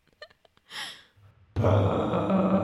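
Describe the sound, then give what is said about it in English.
A voice imitates the huge horn of the aliens in a film's sound design, heard when they are in their machine: a few soft clicks and a breathy intake, then a sudden loud, low, buzzy blare that holds steady and rough until the end. “Because the alien, the sound design is kind of this big horn when they're in the machine.”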